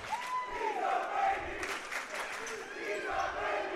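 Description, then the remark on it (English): A large home crowd at a basketball game roars and chants steadily, shouting "He's a baby", a dense wash of many voices with no pauses, loud and echoing, while a lone voice rises above it now and then. “He's a baby, is what they're shouting here from the home crowd”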